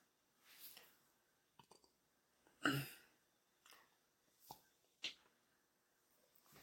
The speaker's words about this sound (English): Excuse me one second. Sorry about that. I had to burp.